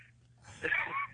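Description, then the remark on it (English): A man's heavy, raspy wheezing breath drawn in, rising into a strained, whistling hiss for about half a second before fading. “Oh, he's wheezing.”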